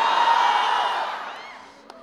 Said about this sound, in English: Can I hear you shout? Can I hear you stomp?